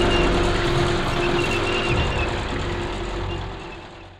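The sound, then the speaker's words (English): A convoy of many heavy military trucks rumbles down a street in a continuous, loud engine drone with deep low-end growl, easing off slightly toward the end. No one speaks. “Dad, there's a bunch of military trucks coming down the street.”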